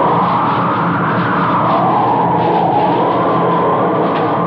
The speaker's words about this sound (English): Not in this storm. Listen to that wind.